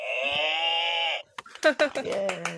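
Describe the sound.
A person imitates a cow's moo as a last farewell buzzer moo, with one long, steady, buzzy call lasting about a second, then breaks off into quick chatter and laughter from other voices.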